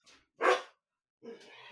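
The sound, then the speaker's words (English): A dog barks: a short, soft yip, then one loud, sharp bark, and after a brief pause a longer, drawn-out bark. No one is talking. “My dog thinks there's also no depth.”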